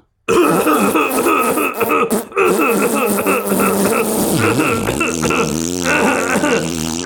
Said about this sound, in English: Oh, no, the Huel double chocolate shake I ate for lunch. I think it's... Oh, I'm just going to let out a little fart. All right, then, to release the pressure.